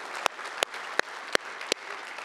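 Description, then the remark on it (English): A church audience at Kingsway claps briefly, a soft wash of many hands with a handful of sharp, loud individual claps popping out at uneven intervals. No one speaks over it. “First stat, don't clap. Second part, we'll clap.”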